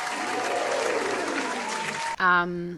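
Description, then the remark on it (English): A steady burst of crowd applause, dense and fairly loud, runs for about two seconds before cutting off abruptly, followed by a short, bright tonal sound at the end. “Round of applause. Put in the round of applause on you.”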